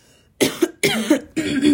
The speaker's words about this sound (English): There's gonna be a few coughs in between, but hey, it's called dedication.